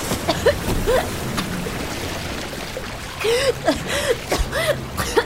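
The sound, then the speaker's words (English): Rushing water floods a sealed room, rising fast toward the ceiling, with a steady, churning wash broken by repeated gurgling, bubbly swoops and small splashes that rise and fall throughout. “The water is about to meet the ceiling of this place.”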